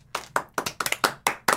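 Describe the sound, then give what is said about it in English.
Hands clap in a short, uneven burst, about eight sharp claps over a second and a half, like a small, brief round of applause from a class, with no voices. “Class, applaud.”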